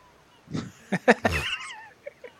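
A voice imitates a loud, exaggerated sneeze: a breathy burst, then a few sharp clipped catches and a strained, wavering squeal that trails off, with no one else talking.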